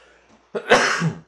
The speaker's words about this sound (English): Ooh, excuse me. I sneezed.